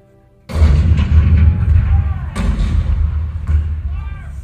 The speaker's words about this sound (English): April 12, 1861, Fort Sumter. The cannon spoke for war, bitter, violent, and devastating.